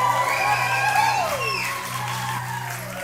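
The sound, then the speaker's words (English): An audience whoops and hollers, with several high voices sliding up and down in pitch at once over a steady low hum, fairly loud and sustained for a few seconds. “So we're going to give you a big whoop and holler and applause”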